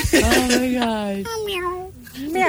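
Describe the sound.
A person imitates a cat, giving three drawn-out meows in a row, the voice sliding up and down in pitch like a cat's cry.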